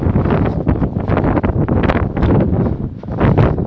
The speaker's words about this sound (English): Fuck, it's really windy.